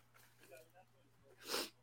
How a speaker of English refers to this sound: Sniffles.